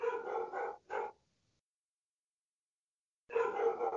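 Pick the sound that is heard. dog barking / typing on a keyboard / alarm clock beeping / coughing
dog barking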